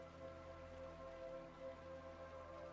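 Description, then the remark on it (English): Soft, steady rain patters continuously beneath sustained, gentle ambient music tones, the whole scene quiet and even throughout with no talking. “Listen to the music, the rain.”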